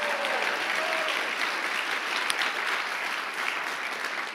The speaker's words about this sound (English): Come on, give the Lord a great hand clap.